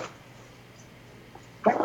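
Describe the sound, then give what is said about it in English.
After a stretch of near silence, a single sudden sneeze bursts out loud at the very end, sharp and breathy. “Bless you. Just had a respiratory orgasm.”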